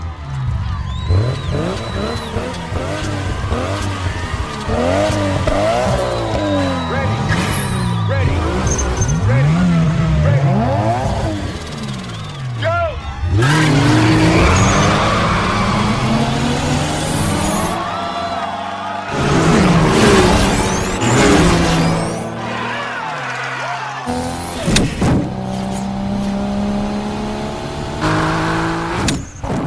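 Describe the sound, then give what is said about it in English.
Race cars launch off the starting line after Tej counts down the race, Ryan and Slapjack shifting into second gear, with loud, roaring engines, their pitch repeatedly climbing and then dropping at each gear shift, the revving sustained over the whole stretch and broken by a few abrupt cuts. “The racers are off. Ryan and Slapjack shift into second gear as the minute ends.”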